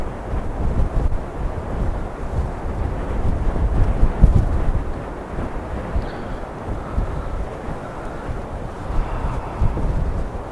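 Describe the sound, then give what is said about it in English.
Strong wind buffets the microphone in continuous rumbling gusts, with low roaring swells rising and falling throughout; no voices are heard. “It's too windy.”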